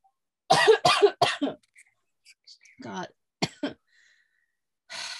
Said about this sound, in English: That cough is contagious. It's carrying all the way over to Pennsylvania. I literally am the one who had it first.